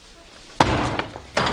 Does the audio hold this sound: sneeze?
no